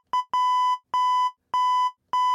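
Loud, electronic bleep tones tap out the rhythm of the happy birthday song, each long steady beep cut short and followed by a brief blip, repeating alone with no talking.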